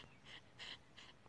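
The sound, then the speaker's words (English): A hot female dog pants in quick, breathy bursts, three airy puffs in about a second, fairly quiet with no voices over it. “Mochi's panting.”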